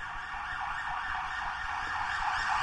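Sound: ambulance siren passing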